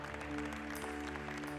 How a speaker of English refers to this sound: Amen. Let's give him one more hand clap of praise today.